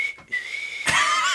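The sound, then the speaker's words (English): A person whistles an imitation of a steam train whistle: a steady, high-pitched tone that turns breathier and louder near the end, dropping to a lower pitch. No one talks over it. “It actually is more descending,”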